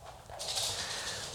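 Light, rapid clicking of dogs' claws tapping across hard floors, fairly quiet and steady over a soft background hiss, with no one speaking.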